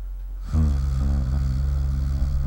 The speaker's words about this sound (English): Dude, that hum is getting loud. Where's that coming from?